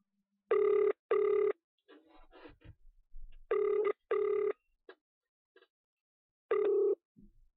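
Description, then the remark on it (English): A telephone rings for a phone call interview on a show, in a steady pattern of short double bursts, clear and fairly loud, repeating three times with faint rustling and clicks in the gaps between rings. “Don't go anywhere as we conduct the phone call interview.”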